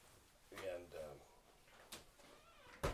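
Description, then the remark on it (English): A door shuts with a sharp knock near the end, after a softer bump a moment earlier, while people talk quietly in the background. “if you get that door.”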